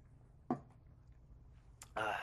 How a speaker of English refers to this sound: I'm gonna open a fizzy water right now, in case you heard that noise.